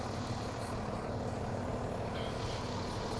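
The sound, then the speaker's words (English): A lorry or delivery vehicle's deep engine rumble fills the street by a building's goods entrance, a steady, fairly loud roar of heavy traffic that holds without a break for a few seconds, with no one talking. “So you have to forgive me if it gets noisy with lorries and delivery vehicles.”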